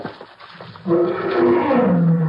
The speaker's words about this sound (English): Now a mangy lion waiting for us.